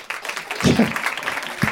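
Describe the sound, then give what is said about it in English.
A short burst of audience applause after a comedian's joke about the Boston Marathon terrorist, a dense, steady crackle of many hands clapping, with a couple of brief voice sounds rising through it. “We've created the one situation where that would get applause.”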